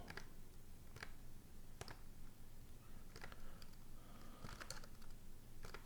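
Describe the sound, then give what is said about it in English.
Quiet, irregular clicking of keys on a computer keyboard, with scattered taps and a few short bursts over a low background hum. No one speaks. “Keyboard.”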